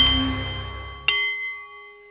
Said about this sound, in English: The Nepalese Meditation Bowl is chiming, and that means it is time for The Art of the CEO, the show for people who enjoy the challenge of business and who want to do it a little better.